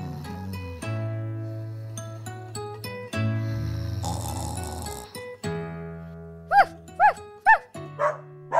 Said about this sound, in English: I heard Tommy barking again.